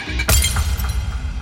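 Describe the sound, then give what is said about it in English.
A glass soda bottle is smashed against the back of a seat once with a sharp, loud crack, followed by a scattering of glass shards tinkling and settling for about a second, with no voices. “A few of them scramble to find soda bottles that they can break against the back of a seat so they'll have a piece of glass to use as a weapon.”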